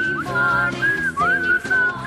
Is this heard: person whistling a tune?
yes